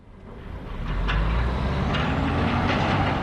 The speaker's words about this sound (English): As logs are loaded onto trucks behind us, he explains.